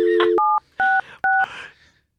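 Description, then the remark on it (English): Telephone keypad dialing: a brief dial tone gives way to three loud, clear electronic key beeps spaced about half a second apart, each followed by a short rustle of handling noise. “Hold up, it's dialing.”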